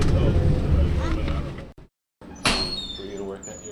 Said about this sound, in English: With that, the bus pulls up and stops where we began our trip more than 3 hours ago. We're getting off here.